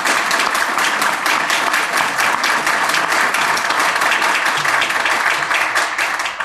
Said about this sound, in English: So please join me in a round of applause for these incredible panelists.